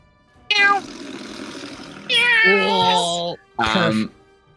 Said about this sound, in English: get some cat noises going.